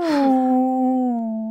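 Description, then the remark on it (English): A person imitates a whale call with one long, loud, hum-like moan that starts breathy, then holds steady and slowly slides lower in pitch for about a second and a half. “Can I hear you try to do a whale call”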